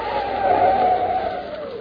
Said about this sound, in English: And all at once, a figure of a man loomed up in the flood of his headlights, stood there, motionless, in the middle of the road. Mike had to slam on his brakes so that he wouldn't run over him.